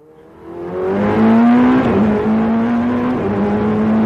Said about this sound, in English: That roar is from inside a race-ready Ferrari 488 GTE, a hyper-tuned sports car built for endurance racing. A capsule of carbon fiber and rebar steel with a wheel full of buttons. At 170 miles per hour, it sends vibrations that clench your guts.